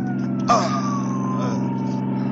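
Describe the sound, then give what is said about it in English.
An ambulance siren wails with a slowly falling pitch over a heavy, constant engine rumble, broken by a brief sharp burst near the start. “tell the driver to stop this ambulance.”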